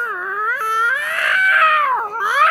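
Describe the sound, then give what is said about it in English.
An angry cat yowls in one long, loud, drawn-out wail that rises and wavers in pitch, alone with no other sounds around it. “That cat's either really hungry or in heat.”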